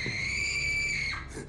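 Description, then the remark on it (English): A young woman lets out a single loud, terrified, high-pitched scream, sustained for over a second before breaking off, with no talking alongside it. “I will give Anna Paquin credit for having a great scream. That scream she lets out”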